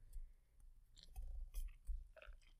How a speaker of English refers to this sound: Time for another sip of my wine.